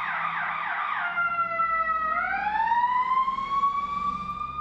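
A fire truck siren blares and grows louder, starting with a rapid warbling yelp, then sliding down and sweeping back up into a long loud wail, with low traffic rumble beneath.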